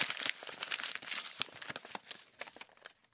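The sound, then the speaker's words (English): Crinkling of a square of creased wrapping paper being unfolded, a steady run of dry rustles broken by sharp crackles and snaps for about three seconds, with no voices. “He got up, jumped with feline grace into my lap, and proceeded to unfold himself.”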